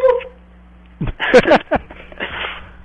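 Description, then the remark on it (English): A dog yelps in a quick burst of sharp, high cries after a brief whine, loud, followed by a short stretch of faint rustling noise. “It sounded like a dog.”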